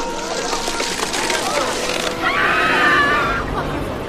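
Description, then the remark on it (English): A shrill, drawn-out stock soundboard scream rises out of a noisy, busy background and holds for about a second before fading, loud. “It was obviously, like, one of those, like, soundboard screams, like, that was a bad impression”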